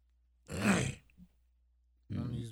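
A gruff, raspy, habitual throat clearing of phlegm bursts out loudly for about half a second, then after a short pause a second harsh clearing begins.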